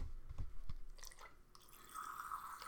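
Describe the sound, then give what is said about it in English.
A person grabs a plastic water bottle, a few soft thumps and crinkles, then wet gulping and swallowing sounds as they drink water from it, with no one talking. “Dude, you always grab that water bottle when we're doing the podcast.”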